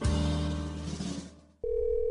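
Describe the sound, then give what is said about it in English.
A telephone rings with a loud, bright bell burst that fades over about a second and a half, then a steady electronic tone sounds. No one speaks. “I was afraid to answer the phone.”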